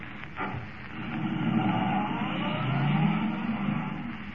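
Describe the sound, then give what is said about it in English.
A car engine roars as Kent forces the car to the limit of its speed, racing toward Linwood, its pitch climbing steadily over a few seconds, loud, with no voices present. “Forcing the car to the limit of its speed, Kent races toward Linwood, convinced now that the mechanical man is more than just a myth.”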